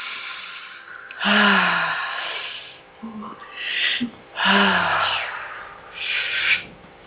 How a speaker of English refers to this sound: Breathe inwards to our divinity, and then exhale as it expands through our entire being. Ooh. Filling our bodies and our energy fields. Breathing in. And expand with the exhale.